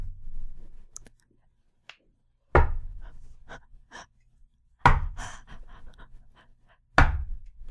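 Heavy, hollow knocks land on the drywall walls of a small built set about every two seconds, three loud thuds in all, with softer taps and clicks scattered between them in otherwise quiet surroundings.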